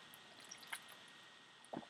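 Quiet sipping of water: a faint wet slurp followed a second later by a soft swallow, with near silence around them and no talking.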